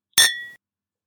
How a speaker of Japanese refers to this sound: おじいさんは二つのグラスにワインを入れます。そして乾杯します。